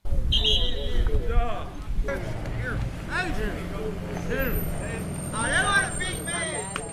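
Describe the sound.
A large bus rumbles close by and its brakes let out a high, sustained squeal near the start as it stops, with a murmur of voices continuing over the idling engine.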